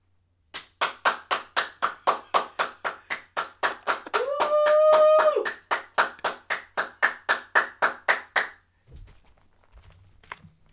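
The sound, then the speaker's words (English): A single person leans out of a window and claps for the NHS, steadily and evenly for about eight seconds, sharp and loud. Partway through, the same person lets out a sustained high 'woo'. Then the clapping stops. “I should go and clap for the NHS.”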